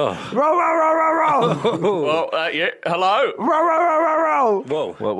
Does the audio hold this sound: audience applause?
no